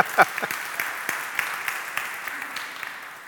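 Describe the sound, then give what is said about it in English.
An audience claps steadily, a dense wash of many hands with sharper individual claps popping through, holding at a moderate level for a few seconds without anyone speaking. “You can clap, you can clap. It's okay, you can clap.”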